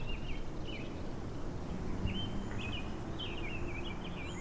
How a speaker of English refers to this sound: I tried to capture a sonic postcard, of this time, the sound of social distancing in 2020, the not-so-busy streets, the city stillness. Maybe it's just because it's spring and I'm home more now, but did the birds seem louder recently?